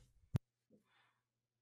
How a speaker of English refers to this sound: Bless you. He's sneezing right now. Oh yeah, I'm sneezing. I'm under the weather right now.